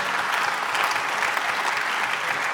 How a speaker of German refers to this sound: Genau, ja, einen Applaus da.